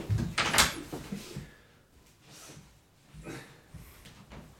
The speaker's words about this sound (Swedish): Nu är det någon som öppnar dörren. Vänta en sekund. Hej älskling.